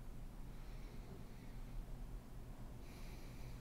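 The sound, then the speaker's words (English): A demonstration of incorrect shallow breathing: quiet, shallow breaths drawn in and pushed out over a steady low hum, with a slightly sharper airy exhale near the end. No one speaks. “can you demonstrate incorrect breathing?”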